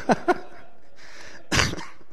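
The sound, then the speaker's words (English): Two quick coughs, a breathy intake of air, then a louder, harsher cough burst. No one speaks. “No humor today because I start coughing when I laugh.”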